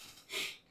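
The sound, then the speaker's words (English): A single quick, stifled sneeze: a short breathy burst of hiss that swells and fades within a fraction of a second. It is fairly faint, with no voices. “Gesundheit.”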